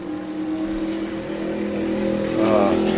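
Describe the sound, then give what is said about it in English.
A motorcycle engine hums steadily, its pitch climbing in a brief rev near the end before holding. No voices are heard. “Sunday with the motorcycle.”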